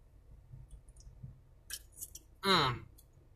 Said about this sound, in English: Taking a quick sip here.